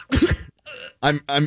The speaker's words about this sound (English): Holy crap. I couldn't even get to the cough button fast enough. I didn't know it was coming. It sounded like a bug flew into your mouth or something like that. You were like in the middle of a take and then just...